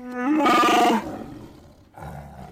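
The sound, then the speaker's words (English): Chewbacca's Wookiee growl, a movie sound effect from the Hoth scenes: a loud, throaty howl that rises in pitch and holds for about half a second, then fades, followed by a shorter, lower rumbling grunt. No one speaks. “Yeah. Hoth growl.”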